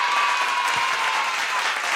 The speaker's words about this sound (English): Just the one applause for me this week.